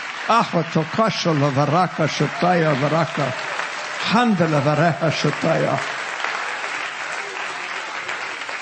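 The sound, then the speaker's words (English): An audience claps again in rejoicing, a steady, dense wash throughout while a loud, animated voice speaks over it for the first six seconds; then the applause carries on alone, slightly softer. “Clap again and just rejoice for a moment in time.”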